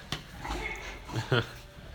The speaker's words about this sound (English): That wasn't me, by the way. Yeah, the little snorts that you're hearing are actually from the dogs that are here.